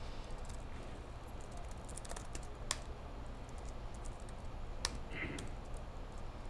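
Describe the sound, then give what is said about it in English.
Typing code on a computer keyboard during a live demo, with scattered sharp key clicks and a few louder taps over a steady low hum, with no other sounds standing out. “One too many tabs. Let me tap this over one more time.”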